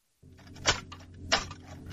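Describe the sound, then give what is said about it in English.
A rattling, metallic clatter like someone rummaging through a cutlery drawer, heard while moving forward from the Icarus main airlock into the Icarus main corridor, with two sharper clanks standing out over a steady low mechanical hum. No one speaks. “Sounds like I'm rummaging around the cutlery drawer.”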